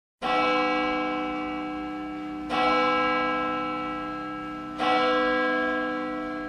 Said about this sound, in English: A bell, B-E-L-L, is a metal thing that makes a sound when you shake it. It sounds like